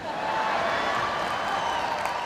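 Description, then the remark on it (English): Steady audience applause to hear a singer sing again, a dense wash of many hands clapping at once, holding an even, fairly loud level without breaks throughout. “I know that you're applauding to hear … sing again.”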